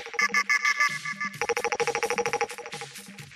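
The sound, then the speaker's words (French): A phone ringtone plays loud, a bright electronic melody of rapid repeated tones shifting into a fast trilling burst, with no voices over it. “À 7h50 tous les jours, sois prêt à décrocher ton téléphone parce que ça va envoyer du lourd.”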